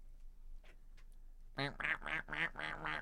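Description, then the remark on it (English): A voice imitates a duck, letting out a quick series of about five nasal, raspy quacks after a brief quiet stretch. “And the very large man will look at it, quack like a duck.”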